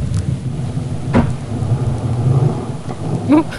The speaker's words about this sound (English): That sounded like a giant burp. It's actually a male harbor seal. They make kind of this growling sound. And then there's a couple like smacks in there. That's actually a humpback slapping its fin on top of the water